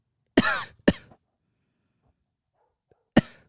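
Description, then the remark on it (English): A voice imitates a man's coughing fit in bed at night: two harsh coughs in quick succession, a couple of seconds of quiet, then one more loud cough. “The whole bed shakes every time he coughs.”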